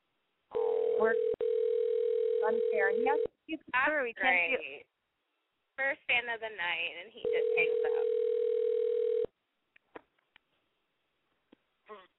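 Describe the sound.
A steady, flat telephone dial tone drones after the line goes dead, breaking off and returning once, while people talk over and between the two stretches of tone.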